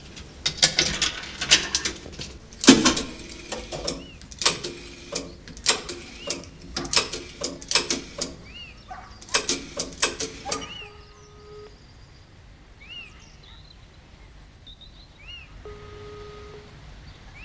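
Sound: dialing a telephone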